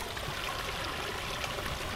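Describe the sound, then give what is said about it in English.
A small waterfall on a creek trickles and splashes steadily, a continuous bright rushing of falling water with no pauses and no voices over it. “Oh, here's a little waterfall.”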